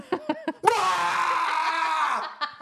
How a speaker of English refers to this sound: I don't want them to hear me making any sounds. It's very embarrassing. What sounds do you think you're going to make? I don't know. I've never smashed anything. I might unleash a roar.